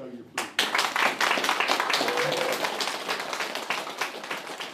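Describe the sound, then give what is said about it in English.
A crowd at the opening of a community exhibition about bats in the Catlins, South Otago and Southland, bursts into sustained applause, many hands clapping in a dense, steady patter that stays loud for several seconds with no voices rising above it. “And this applause, well, that's for Katrina Gower, the person who has been driving this project in her spare time.”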